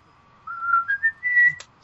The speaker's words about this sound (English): I like the guy whistling in the background.